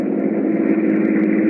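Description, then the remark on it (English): A steady car engine hums along at a constant low-pitched drone, a continuous road rumble with no breaks or changes, as a car cruises down a highway at night in a storm, driving to an airport just outside town, the wet highway glistening in the headlights. “So Tom and Nita rush out of the house and drive to the airport just outside of town.”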